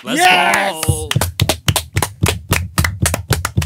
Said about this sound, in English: Clap it up for him, boys. Clap it up.